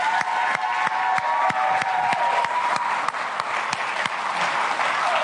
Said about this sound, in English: So here's what I need from all of our amazing people in here. If you're online, would you just give a massive round of applause? I want to introduce you to our new youth pastor,